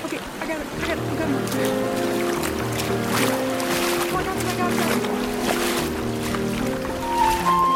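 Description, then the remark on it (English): Steady, heavy rushing of a river flooded by overnight rain, a continuous churning roar with splashing as someone wades across a rock-path crossing, the water wide and heavy against the legs, with tonal voice-like sounds layered over the water. “What was a reasonable cross on a rock path is now a raging block of water, wide and heavy against my legs.”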